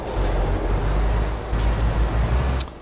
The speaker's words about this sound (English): You don't want dead silence. Imagine that. Imagine listening to dead silence. Imagine what kind of horrible thoughts you might have. Awful. No, you need a little bit of truck noise.